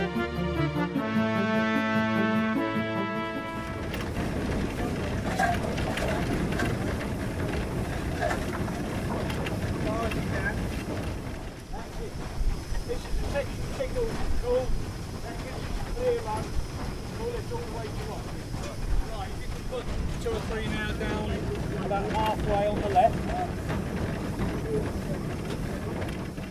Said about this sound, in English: We now rejoin Cheltenham for the next section. Uphill, back to Ropley. I seem to have drawn the short straw and have to fire the train